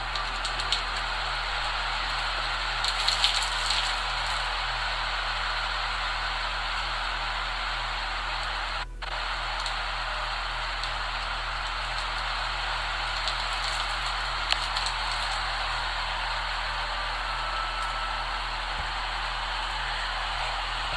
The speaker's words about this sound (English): Anyway, let me show you what the rain looks like.